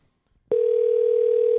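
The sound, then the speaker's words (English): A steady electronic ringing tone of an outgoing phone call switches on abruptly after a brief quiet moment and holds at an even pitch, loud, with no voices. “Is he ringing?”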